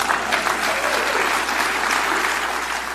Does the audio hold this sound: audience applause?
yes